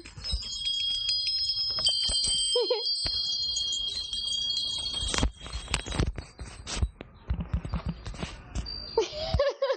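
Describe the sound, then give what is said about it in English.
Wind chimes ring steadily with bright, overlapping metallic tones for several seconds, joined by scattered clattering and knocks, then fade into softer tinkling and muffled shuffling. “We were doing the wind chimes in the background.”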